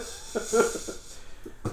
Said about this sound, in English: So we'll let him cough it out for a second. Are you all right? He's got he's got a vein popping out of his forehead right now.